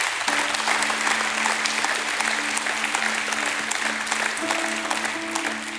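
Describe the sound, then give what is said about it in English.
An audience at a church service bursts into sustained applause as a hand clap of praise to God, a dense, steady wash of many hands clapping at full volume, with a faint held organ tone humming underneath throughout. “Give God a great hand clap of praise.”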